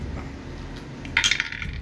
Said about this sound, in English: Oh, here goes my dice.